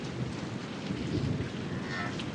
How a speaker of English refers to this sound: What can we do? It's raining.